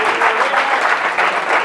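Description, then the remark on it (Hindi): A church audience claps together at the preacher's call during a sermon, in a steady, dense burst of applause, loud and continuous throughout with a slight rhythmic pulse, no voices standing out. “और उसी में ताली बजाओ और खुश रहो.”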